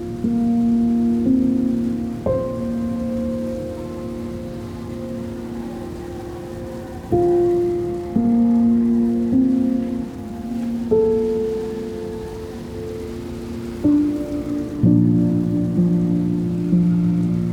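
Steady rain falls and patters on surfaces in a constant hiss, blended with soft, sustained musical tones that shift every couple of seconds. No one speaks.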